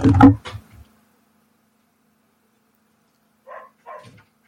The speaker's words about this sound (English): dogs start barking at my door.